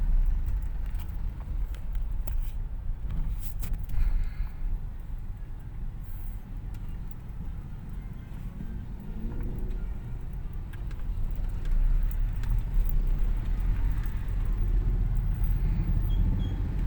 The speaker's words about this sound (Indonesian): Pak Ogah yang bikin macet, Pak Ogah. Aduh, ini macet Cileungsi macet.